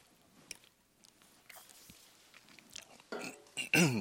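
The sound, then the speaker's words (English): Someone choking on water: faint swallowing and mouth clicks, then a few loud, rough sputtering coughs near the end, the last one harsh and strained. “As I choke on water.”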